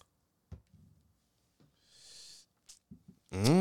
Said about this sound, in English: Hold on. Let me sip. Mm-hmm.